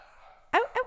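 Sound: dog barking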